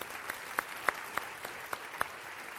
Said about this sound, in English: So thank you very much for the volunteers. Give me a round of applause. That's great.